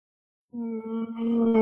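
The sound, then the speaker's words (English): A single long, low whale call, heard in an online voice chat, rises out of silence and holds as a steady, droning moan with rich overtones, fairly loud, with no talking over it. “There's a whale. Someone let a whale on the Discord.”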